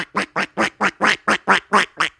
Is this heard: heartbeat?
no